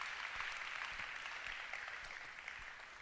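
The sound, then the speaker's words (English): Steady audience applause for educators, a dense wash of many hands clapping at once, sustained and fairly loud throughout before easing off slightly toward the end. “Guys, let's give them one more round of applause.”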